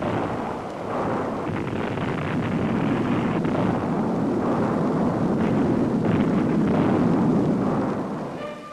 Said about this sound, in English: Explosions rocked the canyon almost daily for 2 years before actual placing of concrete in the dam began.